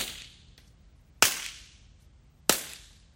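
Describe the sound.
Two sharp, loud cracks a little over a second apart, voiced in imitation of a golf ball being struck hard, each snapping sharply and fading quickly, with no talking.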